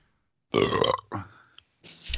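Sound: burp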